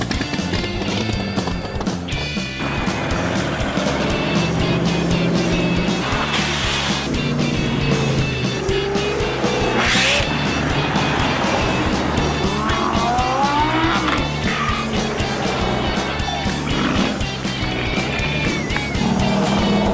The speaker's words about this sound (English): The spectators even enjoyed the grand finale when all of these cars fired up and left the show.